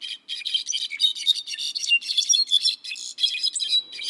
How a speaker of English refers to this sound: How many birds do you think are here? It sounds like a whole orchestra, but it's just one bird, the brown-backed solitaire. Their appearance is quite ordinary. They are medium-sized, gray-brown birds,